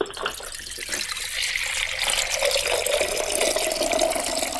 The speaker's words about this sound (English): Commence the pour. Here we go.